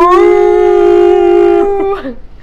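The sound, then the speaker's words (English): A human voice imitates a whale call: one long, loud, steady moaning tone, held for over a second before it wavers and breaks into short warbling dips. “Or, like, when she starts speaking whale.”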